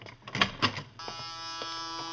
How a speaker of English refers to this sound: Hey, this clinic is swell. Door buzzers and everything.